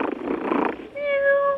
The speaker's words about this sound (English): Buttons is my little cat. She's right here. Say hello, Buttons.